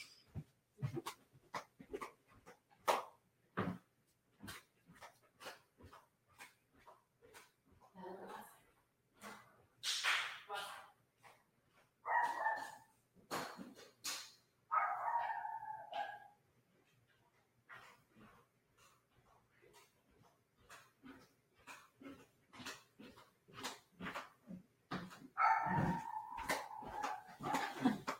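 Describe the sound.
A female dog, just put outside, barks repeatedly in sharp bursts, some barks stretching into whiny yelps, with brief pauses between volleys; occasional human voice and movement noises mix in.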